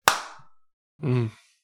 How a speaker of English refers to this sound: God damn, I can clap, dude. There's one thing I can do.